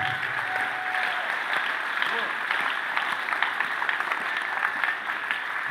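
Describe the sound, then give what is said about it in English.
Steady, dense applause from a large group of people, a continuous crackle of many hands clapping at once, holding an even level throughout without pause. “You're clapping.”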